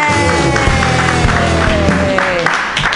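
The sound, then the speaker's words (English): Loud, steady applause from a comedy show audience for a comedian, with scattered cheers and whoops rising over the dense clapping for the full few seconds. “Everybody clap wildly for”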